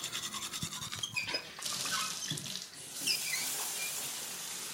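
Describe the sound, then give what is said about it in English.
Running tap water pours into a coffee pot, about half a gallon, in the morning, a steady rushing hiss with a few clinks and shifts as the flow changes; no one speaks. “Gotta get some coffee. Jumpstart my morning. Working sheet. About half a gallon.”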